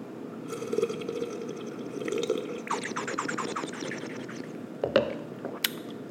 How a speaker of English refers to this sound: But yeah, so hold on. I'm going to take a sip of some water. Some more ASMR for you.